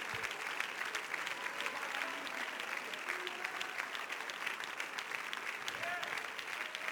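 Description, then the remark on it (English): A church audience claps their hands together in worship of Jesus, a dense, steady wash of applause that holds at an even loudness for several seconds, with faint voices mixed in underneath. “If you would clap your hands and love on Jesus just a little bit.”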